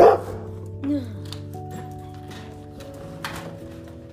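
Dogs bark in a few separate bursts, a sharp one at the start and more scattered later, over a steady background hum; the dogs are outside, barking at a neighbor.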